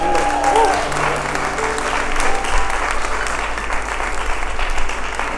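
Steady applause from an audience fills the whole stretch, a dense, even wash of many hands clapping, with a brief tonal squeal near the start.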